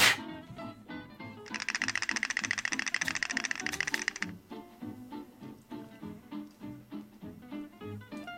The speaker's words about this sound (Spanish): Vamos a tirar dados de vuelta.